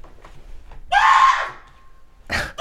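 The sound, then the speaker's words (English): A voice imitates a young child yelling for fun in a house: a loud, drawn-out shriek lasting about half a second that trails off, then a second brief yell near the end. “No, it's my youngest just yelling for fun and my wife yelling back at her.”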